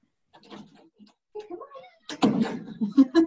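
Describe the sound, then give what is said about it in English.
A cat outside a door, wanting to be let in, meows several times, its cries rising and wavering, then scratching and rattling noises at the door build into louder bursts and sharp knocks. “He's out there scratching and crying.”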